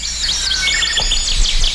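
Golden-crowned sparrow song, a large North American songbird, amid a busy wash of overlapping high chirps and thin whistled notes, steady throughout, with no voices.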